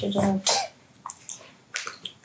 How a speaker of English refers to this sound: Sponsored by water coming from the tap. The tap of the natural spring that I am drinking of. Still water. Great. Refreshing.